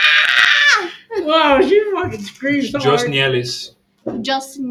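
A girl lets out a loud, piercing scream lasting about a second, followed by bursts of high-pitched, strained wailing, intense, with a brief pause before a final cry.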